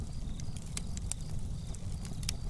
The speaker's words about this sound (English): We love to watch the flames dance and sparks fly. It's mesmerizing. Even the sound of a campfire entrances us.